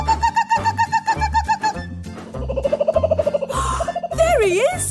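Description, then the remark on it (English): A ranger imitates a kookaburra's laughing call as Thomas the Tank Engine puffs slowly along, a loud run of rapid rhythmic hoots and cackles rising and falling in pitch over a steady musical backing. “As Thomas puffed slowly along, Ranger Jill made the bird sound again.”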